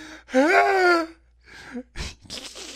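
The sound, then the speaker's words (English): A person imitates Cisco's cheesy scream from The Flash: one loud, strained, rising-then-falling vocal wail lasting under a second, followed by a few softer breathy gasps and noisy bursts. “Just the scream from Cisco. Oh, yeah, his cheesy scream, yes.”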